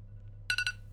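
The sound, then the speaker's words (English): A timer beeps three times in quick succession, short bright electronic tones with a ringing, slightly chime-like quality, over a low steady background hum. “Now, oh, there's my timer.”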